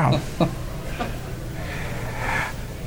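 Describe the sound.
A person imitates a cat hacking up a hairball: a few sharp, throaty bursts, then a longer raspy, gagging rattle, with no words spoken.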